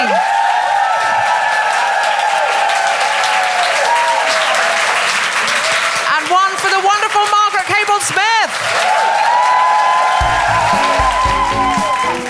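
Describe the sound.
Loud, sustained audience applause for a guest fills the whole stretch, dense clapping with some cheering and whoops rising through it, while voices shout and talk over the noise.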